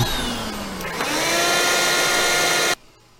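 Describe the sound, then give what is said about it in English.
A vacuum cleaner runs over a carpet, roaring with a steady, high motor whine that climbs in pitch after about a second, then shuts off abruptly, leaving only faint background hush. “The carpet should be vacuumed, though.”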